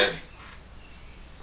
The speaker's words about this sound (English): He coughs every now and then.